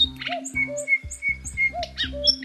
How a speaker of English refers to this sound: Can you recognise any of these birds? There are warblers, robins, woodpeckers, and blackbirds. This beautiful song is made up of all different bird calls